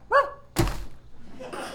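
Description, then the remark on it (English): A short yelping bark, then a heavy, dull thud of someone landing on the ground after jumping down off a buckboard wagon, followed by faint shuffling noise. “Well, off the buckboard. Here we go. I'll jump next.”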